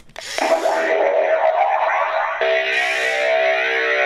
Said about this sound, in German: Er kann auch Special Effects, die schalten wir gleich mal an, die kann er auch abspielen. Das Ganze klingt dann so.